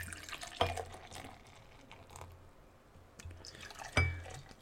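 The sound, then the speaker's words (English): Beer, a half-and-half mix of Dunkel and Temptress, pours quietly into a glass in a soft, steady trickle, with a sharp clink of glass near the start and another near the end. No one speaks. “Trying to make sure I pour it right.”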